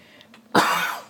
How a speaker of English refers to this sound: Did you just cough? I did just cough. You told me the whole time that I can't cough, and then you just coughed.